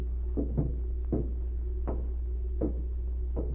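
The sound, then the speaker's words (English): The front door of a diplomat's house opens at night with a series of soft wooden clunks and rattles, spaced irregularly, over a steady low hum, moderately quiet, with no voices. “A few minutes later, the front door of the diplomat's house opened, and a short, stocky figure stepped into the night.”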